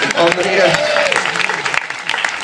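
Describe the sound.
An audience applauds steadily, many hands clapping in a dense, loud wash of crackling claps, with a few voices faintly audible underneath at the start.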